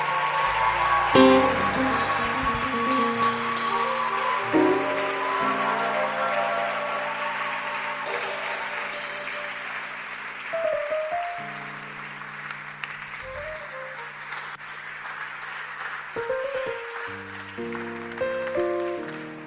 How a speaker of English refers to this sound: Please, you may go back to your seats. God bless you. Clap for them.